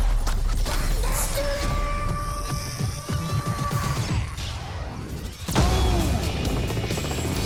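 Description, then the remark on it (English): A loud, dense action-game soundscape from a video game trailer, with a helicopter's churning rotor buried among crashes, metallic impacts and booms, continuous throughout with a heavy hit near the end and no talking. “It was like your jam-packed Call of Duty trailer here. Yelling slat, jumping in the helicopter and shit.”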